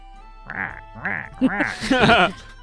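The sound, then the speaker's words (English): A person's voice mimics a rooster crowing, four loud syllables rising in pitch, the last two longer and more strained, like a drawn-out cock-a-doodle-doo. “You guys wake up to the sound of the crow...”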